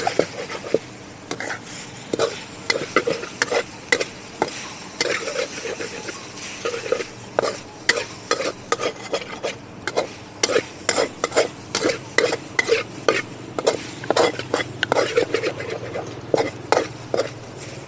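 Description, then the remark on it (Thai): Food is stir-fried in a wok over a steady sizzle, with repeated scraping clanks of a spatula against the pan that quicken into a brisk rhythm, fairly loud, with no talking. “โอ้ยกลิ่นกระทะกำลังมากลิ่นกระทะกำลังมาเลยค่ะเราก็ผัดไปสักแป๊บนึง”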